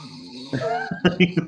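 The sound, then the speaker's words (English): A voice mimics a man's snoring as he falls asleep, a drawn-out nasal sound followed by three quick, rhythmic snorting pulses, fairly loud and with nothing else in the background. “as soon as he falls asleep, the snoring begins.”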